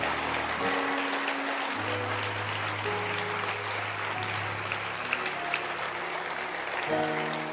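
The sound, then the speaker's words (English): An audience claps their hands to God in sustained, steady applause, a dense wash of many hands that stays loud throughout, with low sustained organ-like tones underneath. “Let's give a hand clap to God.”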